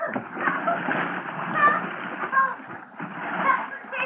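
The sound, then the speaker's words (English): Water splashes and churns loudly and steadily for several seconds as a person jumps into a river in December to rescue a drowning woman and thrashes about, with muffled voices mixed in underneath. “Oh, December is a great month for a dip into the river if you're a polo bear, but in I went.”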